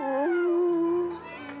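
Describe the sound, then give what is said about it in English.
A wolf gives one long, loud howl that starts higher, slides down and holds a steady, wavering note before fading slightly. No one speaks over it. “The wolves. I love to mock them.”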